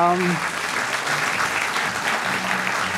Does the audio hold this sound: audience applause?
yes